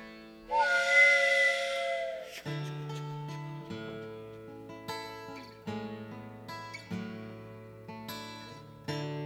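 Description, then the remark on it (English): A freight train whistle gives one breathy, high-pitched blast lasting about two seconds, then plucked string music with steady rhythmic notes takes over and carries on. “We got a freight train back there anywhere?”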